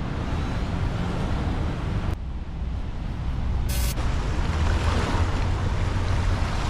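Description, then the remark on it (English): Loud, continuous rushing of a swollen river flowing fast under a bridge, a dense roaring wash with gusts of wind buffeting the microphone and no voices. “This river is not usually like this.”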